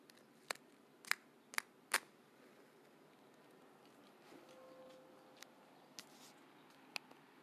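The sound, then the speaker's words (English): A lighter clicks four times in quick succession, sharp, followed by a few quieter, scattered clicks after a short pause, as someone tries to light a cigarette. The clicks stand alone over a faint background hiss. “I had to use my Piper Strikers to light my cigarette.”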